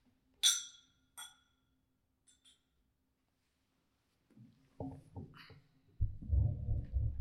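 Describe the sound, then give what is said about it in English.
Bourbon glasses clink together in a toast: two bright, ringing clinks, then a couple of faint taps, followed by muffled handling and low rustling noises. “let's go ahead and get those sips in. Get the cheers in first, of course.”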